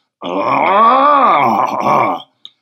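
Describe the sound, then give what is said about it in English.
A person imitates a lion's roar with one long, loud, throaty growl that swells upward in pitch and then sinks away, followed by a short faint click. “The noise of a lion.”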